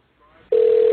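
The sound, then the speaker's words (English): A telephone call tone as a call is placed to a controlled demolition company: after a brief stretch of faint line noise, a loud, steady ringing tone starts midway and holds to the end. “And of course I am familiar with this phone call.”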